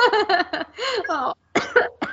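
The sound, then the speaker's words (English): A person with a cold coughs, a fairly loud run of coughs: a quick cluster of short, raspy hacks, a brief silent pause, then a few more coughs. “All I got in me is some coughs.”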